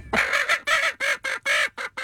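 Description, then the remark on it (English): A chicken clucks in a quick series of about seven loud, raspy bursts, each a short nasal squawk with brief gaps between them, as a woman tickles it under its wings. No one talks. “It's, like, laughing when she tickles it under its wings.”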